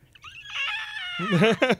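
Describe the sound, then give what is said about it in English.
A woman's voice imitates the scream of Omnigul, a monster from the video game The Taken King that screams constantly when you go to kill it: a shrill, high, harmonically rich screech that holds for about a second before breaking into lower, raspy growling bursts. “She did Omnigul, the thing that screams at you constantly when you go to kill it.”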